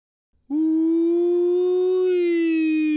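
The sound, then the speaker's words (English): A police car siren starts abruptly after a brief pause and holds a loud, steady, buzzy tone that rises slightly in pitch, alone with no talking. “Ooh, went a siren. Coming through. Busy police car.”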